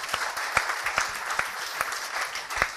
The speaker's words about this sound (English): Now, yeah, you can give them a round of applause.